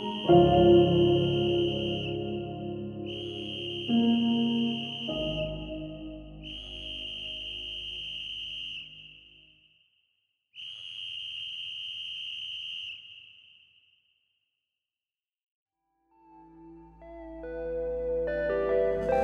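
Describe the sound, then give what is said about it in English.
A whistle blown by a man trapped under layers of rubble, in four long, steady, shrill blasts, each lasting a couple of seconds, over a low musical bed that fades out, leaving the last blasts nearly alone before music returns. “I imagined his dry lips around the whistle and the dispirited emergency crew's layers of rubble above him, leaping up, shouting, "Someone's down there!”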